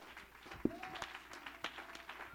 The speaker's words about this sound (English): Oh, somebody clap your hands and give God a shout of praise. Come on, let's worship him.